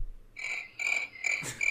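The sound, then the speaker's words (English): A cricket sound effect plays alone: a loud, high, shrill trill that pulses in three close bursts of steady chirping, with no voices. “You got a cricket sound? Yeah, I do.”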